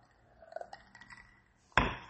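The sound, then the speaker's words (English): Someone drinking water: a few faint clinks and light handling noises, then an abrupt, louder burst of hissing, gulping sound that carries on to the end, with no talking. “Excuse me, I got to drink some water.”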